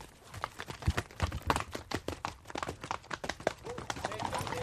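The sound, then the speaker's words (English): A horse's hooves clip-clop in a quick, uneven rhythm, the sharp strikes steady for several seconds, with a rustling, outdoor background beneath them. “And my horse is a mind of its own, decided it wanted to jump straight across, took me unawares.”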